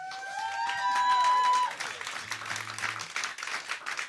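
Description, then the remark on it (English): An audience at a band's live show claps steadily throughout, a dense wash of applause with a few shrill whistles and cheers rising over it at first before settling into continued clapping. “But don't clap, you've not heard it yet.”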